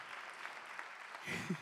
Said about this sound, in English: Thank you for clapping. You're very nice.